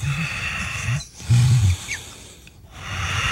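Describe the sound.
A voice imitates a doctor's heavy, raspy breathing up close during an eye test: three low, growling breaths in a slow rhythm, the middle one loudest, with brief pauses between them.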